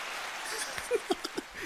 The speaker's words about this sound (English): Have the applause going, yeah.